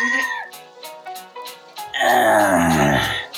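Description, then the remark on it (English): A person voices the wail of a dragon character said to hail from the Wolfhawk Mountains: a few short, breathy moaning sounds, then a long, loud, rough groan that swells and slowly falls in pitch. “It's a place dragon can come from.”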